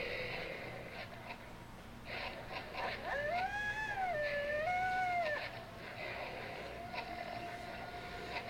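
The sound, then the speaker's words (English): A dog lets out one wavering, drawn-out howl lasting about two seconds, rising and falling in pitch over a steady hiss of background noise. “Did the last recording have this much dog violence?”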